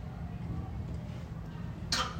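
A sudden, sharp sneeze bursts out near the end, a quick explosive puff of air followed by a brief second gust, over a steady low background rumble.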